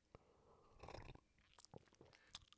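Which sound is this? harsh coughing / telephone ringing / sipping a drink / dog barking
sipping a drink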